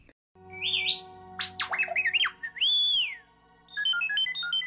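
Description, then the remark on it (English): The Star Wars droid R2-D2 chatters in rapid electronic beeps, rising and falling whistles and warbling chirps, ending in a quick stepped run of tones, all over a steady low mechanical hum, loud. “I've got the TIE Fighter as well. Mm-hmm. R2-D2.”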